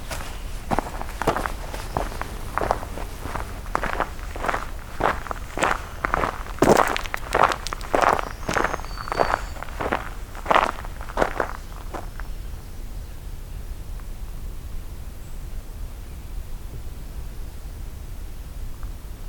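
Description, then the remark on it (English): Steady footsteps crunch across a forest floor at an even walking pace, fairly loud for about twelve seconds, as someone walks toward a singing scarlet tanager. The steps then stop, leaving a quiet outdoor hush with faint birdsong. “Just gonna walk towards where I'm hearing scarlet tanager.”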